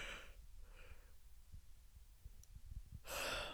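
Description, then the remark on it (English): A breathy yawn: a couple of soft airy intakes, a quiet pause with faint low thumps, then a loud, drawn-out sighing exhale at the end. “And honestly, I think I need a yawn.”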